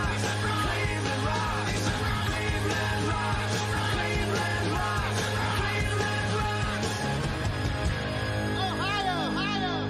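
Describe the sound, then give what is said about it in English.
A loud, dense rock track plays continuously while a man's voice yells "Ohio" over the music, his shouted vocal rising above the driving band near the end. “Oh, and then he just yells Ohio.”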